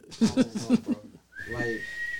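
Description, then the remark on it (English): A brief stretch of voice-like sound gives way to a small whistle, attached to the back of a Yeezy shoe, blown once, holding a steady, thin high tone for about a second, fairly loud. “I threw a whistle on the back of the shoe.”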